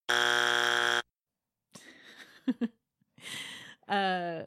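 A loud, harsh Family Feud-style game show buzzer sound clip blares for about a second, followed by short bursts of noisy, jumbled sound and a final warbling tone.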